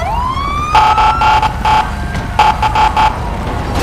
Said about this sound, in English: Whoever has that siren vehicle, can you check it so that I can actually hear the chat, please?